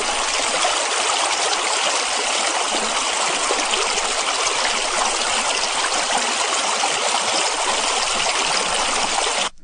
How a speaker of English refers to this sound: Beautiful sound of a flowing stream.